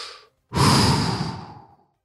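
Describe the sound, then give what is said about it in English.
A short inhale followed by a long, heavy breath out, audible and sighing, gradually fading away over about a second and a half. “Hope is the air we need, and we got to keep breathing. So do it with me.”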